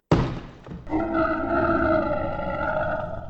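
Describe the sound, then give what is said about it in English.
A loud, harsh burst opens into a sustained, deafening scream with a strong tonal, roar-like edge that holds steady for a few seconds. No one speaks. “All right, you guys hear an almost deafening scream.”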